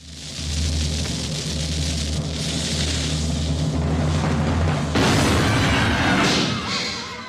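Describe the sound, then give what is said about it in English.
A cannon firing sound effect: a low, steady rumble builds for several seconds, then a single loud blast bursts out and trails off with a crackling, fading roar. No one speaks. “Well, we're firing out of the cannon. Fire the cannon!”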